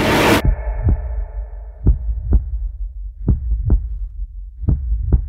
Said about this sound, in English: The heartbeats mean it's really serious.